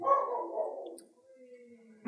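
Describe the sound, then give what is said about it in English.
The speaker's dog lets out one drawn-out, throaty bark lasting about a second, then trails off into a thin, steady whine. It is fairly loud, with no talking. “I would rate it my dog barking.”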